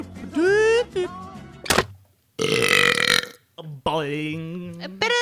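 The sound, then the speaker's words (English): A person burps loudly on cue, rolling out several long, croaky bursts with brief gaps between them, each belch drawn out and resonant. “What, the burp? Like on the cue, you know?”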